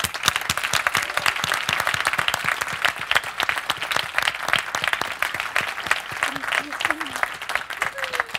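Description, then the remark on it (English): Steady, sustained applause from an audience as a panelist walks onto a stage, a dense crackle of many hands clapping throughout, with a few faint voices rising briefly near the end. “Keep clapping, she's still walking.”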